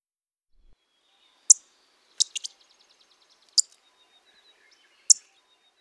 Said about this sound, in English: The orange-crowned warbler call is a simple, sharp, high-pitched chip. One more time, the orange-crowned warbler call.